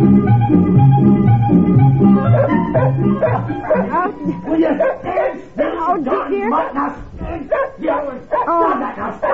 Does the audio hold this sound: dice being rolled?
no